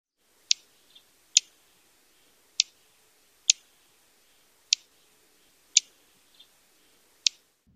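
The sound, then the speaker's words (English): A series of seven sharp, high chip notes from a Vesper Sparrow, spaced roughly a second apart at an irregular pace, each brief and clear against a quiet background with no talking. “So, let's review all of the call notes. First is Vesper Sparrow.”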